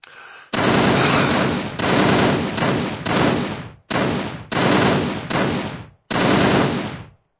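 Loud machine gun fire in a series of sustained bursts, each a dense, harsh rattle of rapid shots, separated by brief pauses. No voices accompany it.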